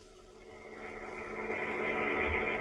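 A car engine runs with a steady, droning hum and low rumble, gradually swelling louder over a few seconds, with no voices.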